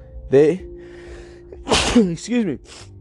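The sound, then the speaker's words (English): A loud sneeze: a voiced, rising intake of breath, a pause, then a sharp burst of breath with a short vocal tail. “I get a sneeze coming.”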